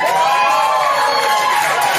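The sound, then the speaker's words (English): A comedy club audience cheers and shouts loudly, making noise at the comedian's request, a dense, sustained roar of many voices with excited whoops riding on top, steady for the whole two seconds with no single voice standing out. “All right, make some noise if you want her to shut up.”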